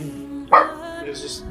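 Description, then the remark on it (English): A dog, Noodle, lets out one sharp, loud bark, followed by a short stretch of quieter background noise with a faint voice-like murmur. “Fucking bark at him.”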